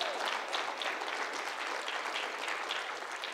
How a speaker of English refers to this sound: Give her a hand clap. Praise God.